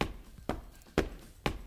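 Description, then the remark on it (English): Four evenly spaced knocks on a wall by a neighbor, about half a second apart, each a sharp, dull thud with no talking in between. “That's my neighbor knocking on the wall.”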